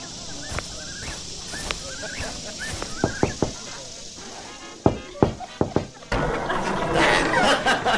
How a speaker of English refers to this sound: Oh, hey, you don't have to knock. You can just come in.